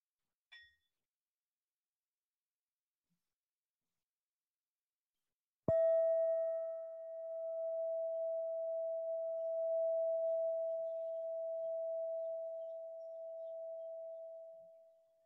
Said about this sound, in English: So I'll ring a bell and just listen. So we'll be listening. First, we'll just listen to the bell.